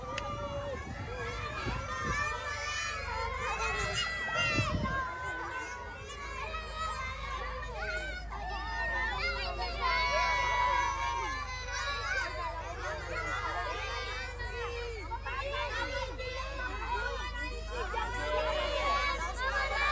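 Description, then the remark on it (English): A crowd of schoolchildren shouting and cheering excitedly in greeting as a van drives onto a school campus in Imus, many overlapping high voices in a continuous, lively babble with a low rumble underneath, heard from inside the van. “You'll hear them yelling Papa Jim when they recognize him.”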